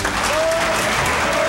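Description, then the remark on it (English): Dense, steady applause from a crowd fills the moment, a continuous wash of clapping at full level with a faint whistle-like tone riding above it. “The myth, the legend. Applause.”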